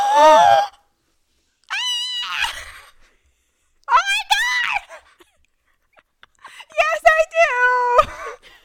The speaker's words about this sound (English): In my headphones, that just sounded like your mic was running away from you. It probably is, because I just screamed into it.